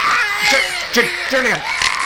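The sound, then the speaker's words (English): A voice imitates the hideous dying scream of a man torn apart by crows: strained, wavering wails with sliding pitch, fairly loud for about two seconds over a hissy background. “And he screams a hideous scream as he dies.”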